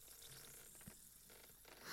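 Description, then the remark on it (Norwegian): A steady, soft fizzing hiss of an orange-scented vitamin C effervescent tablet dissolving in water, continuous, swelling slightly louder at the very end, with no voices. “Bruser flott.”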